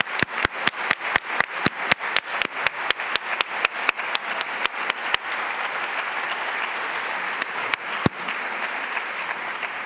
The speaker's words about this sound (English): First, I just want to make sure we give a large round of applause to Ambassador Rice